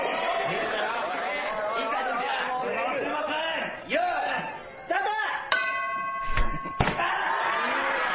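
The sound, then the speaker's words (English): Over steady crowd chatter, a bright ringing ding sounds and sustains, then a heavy thud follows as someone drops to the floor, with a second sharp knock just after. “Okay, so you hear a ding, and then you hear somebody drop like a sack of shit.”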